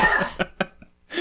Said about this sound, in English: Yes, I'm coughing.